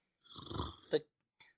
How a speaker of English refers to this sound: Oh, that was me. That was me more snorting in contempt.